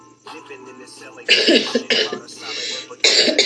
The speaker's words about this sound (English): Excuse me. Just as I'm about to read this poem, I start coughing and my phone starts glitching.